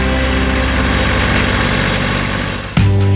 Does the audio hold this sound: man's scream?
no